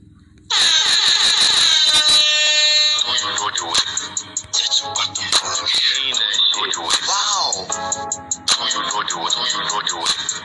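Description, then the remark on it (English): A loud electronic alarm sound effect blares almost continuously for about ten seconds, its shrill, wavering siren-like tones rising and falling, with no one talking over it. “Let me sound that alarm one time for the one time again.”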